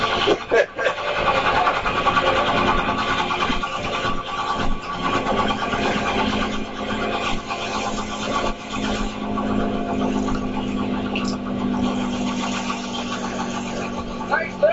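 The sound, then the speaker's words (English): A helicopter engine starts up and settles into a steady, loud idling drone with a low humming tone, while voices talk over the noise. “Yeah, you don't want to get that hair caught up in that helicopter.”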